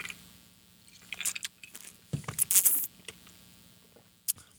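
Quiet handling of a glass of moonshine: a few light clinks, then a short sip with a brief louder rustle and a final sharp tap. No one speaks.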